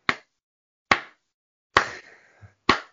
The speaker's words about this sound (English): That's my slow clap for you.